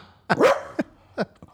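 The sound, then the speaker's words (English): A dog barks: one loud, drawn-out bark followed by two or three shorter, sharper yaps in quick succession, with no talking. “I've done so many shows and so many things have been expressed on this show, and I've never thought for the life of me would I ever hear a dog barking on this show, who's now walking all over.”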